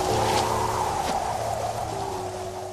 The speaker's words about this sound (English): Oh, come on! I knew it was gonna rain! See? I even brought my umbrella!